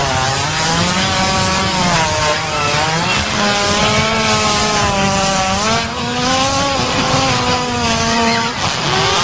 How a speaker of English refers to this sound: Specifically, I believe the other day we stumbled upon a hippo fart and we didn't even believe it was real because it made this noise.